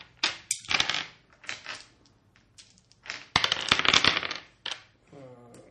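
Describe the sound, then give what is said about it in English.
Dice clatter and tumble across a hard tabletop in several quick bursts of sharp clicks and rattles, with a brief voice heard near the end. “And he's gonna use it for dice.”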